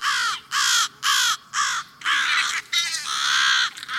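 American crows caw loudly and harshly in quick succession, several hoarse calls in a rough rhythm, some overlapping into an agitated chorus, with no voices, as they defend their nest and protect their young.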